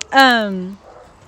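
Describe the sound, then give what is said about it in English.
A dog gives one drawn-out whine that slides downward in pitch over about half a second, then trails off into quiet. “Disgusting ass dog.”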